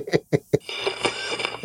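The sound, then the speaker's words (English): Three quick, muffled sneezes burst out in a rapid row, each short and sharp, then give way to a steady bed of ringing, hum-like background sound. “Sorry, I sneezed.”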